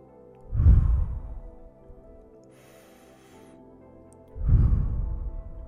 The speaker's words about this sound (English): And every hour, I want you to start breathing into your belly just for 5 seconds or 5 times. Hold, breathe in.